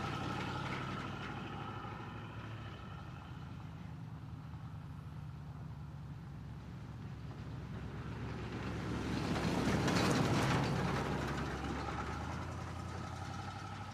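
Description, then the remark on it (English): An Impala car engine idles steadily with a low, droning rumble and humming tones, swelling briefly louder as if revved lightly before settling back. No one speaks. “Driver picks the music, shotgun shuts his cake hole, and the ones in the back enjoy the ride, idling in the Impala.”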